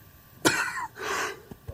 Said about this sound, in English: I'm so sorry, guys. I got so much coughing.